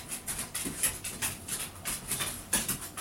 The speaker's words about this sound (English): Is that your dogs making that sound? Yeah. I thought that was you typing really fast.